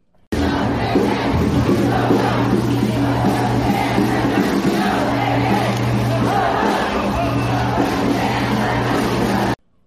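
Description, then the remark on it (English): A dense street protest crowd over Roe versus Wade, with many women, roars and screams for human rights, many voices yelling and chanting together in a loud, unbroken wall of sound with a low steady hum beneath. “Screaming for human rights.”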